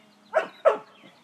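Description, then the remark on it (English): A female retriever dog gives two quick barks in rapid succession, protesting while obeying a command, fairly loud and sharp, with no talking around them. “She still barks on that one.”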